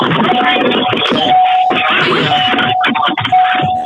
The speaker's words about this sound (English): Okay. That was me. Sorry, seatbelt alarm.